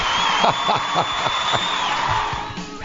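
A studio audience at a radio station, during the program Inside the Industry, cheers and whoops loudly and continuously, with excited shouts rising and falling through a dense wall of crowd noise.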